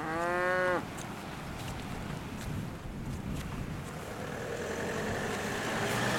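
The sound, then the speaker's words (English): A cow from a small herd on an Atlantic beach with surfers gives one loud moo at the very start, then it fades into steady gusting wind and rushing surf-like noise that continues to the end, with no voices. “But over to my right, joining them on the beach, are a wee herd of cows.”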